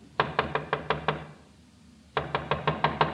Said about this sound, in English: What? Someone's trying the outside door.